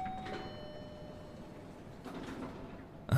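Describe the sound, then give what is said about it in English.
A steady mechanical hum with a brief tone near the start, then a rushing slide of doors opening and a sharp clunk at the end, as an elevator arrives to take riders down to the first floor. “I guess that's for us. And with plenty of time to spare. After you, I'll hold the door.”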